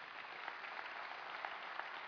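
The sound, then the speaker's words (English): Steady applause from a crowd welcoming a brand new youth pastor, dense overlapping claps at a fairly even level, with no voices breaking through. “Go ahead and give him a round of applause.”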